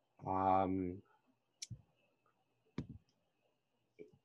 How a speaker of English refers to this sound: Yeah, I hear typing too. I heard typing.